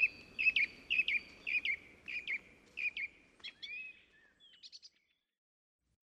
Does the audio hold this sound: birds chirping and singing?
yes